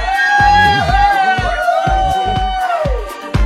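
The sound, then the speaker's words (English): A group of cheerleaders cheers and whoops together, with high, wavering pitched calls riding over rhythmic shouts and bursts of crowd noise, loud throughout. “Yeah, I've got the cheerleaders in the house.”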